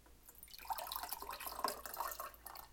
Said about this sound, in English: For some of us, we got a schedule, a calendar, got to get productive, got to get the squeaky out the chair, and got to pour some lemonade.